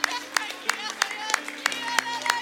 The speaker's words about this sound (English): Will you clap your hands right now and thank God?